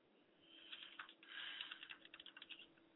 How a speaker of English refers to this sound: Sorry, I was typing a message.